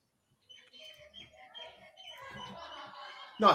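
Birds chirp and tweet steadily in a busy chorus in mid-afternoon at a home, with people's indistinct yelling mixed in underneath and a sudden loud burst of noise right at the end.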